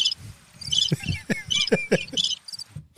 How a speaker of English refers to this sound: That cricket, yo? Hit that cricket.